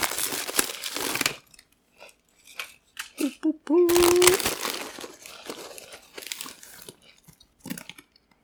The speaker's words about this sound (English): I am kind of like self-conscious about like how much the lavaliers will pick up about us munching and crunching. I'm not even gonna lie.